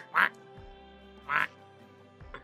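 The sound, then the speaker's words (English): A voice imitates a duck with two nasal quacks about a second apart, fairly loud, with quiet pauses between them and no other talking. “I grab the little thing and I kind of, like, toss it up in the air, and then wings sprout out and you see this beak appear, and I'm holding a duck.”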